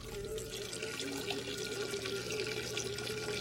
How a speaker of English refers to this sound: … is sitting in that chair, pants around his ankles, and he's pissing into a can